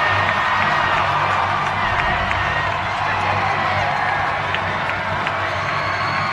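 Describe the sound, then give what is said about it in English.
A steady roar of crowd cheering at a basketball game as the Sentinel girls' team is fired up with a video on the Jumbotron, a dense wash of voices and clapping holding at an even, loud level throughout, with a low droning hum underneath. “As the crowd is fired up, they've got the Jumbotron going on as they're firing up for the Sentinel girls.”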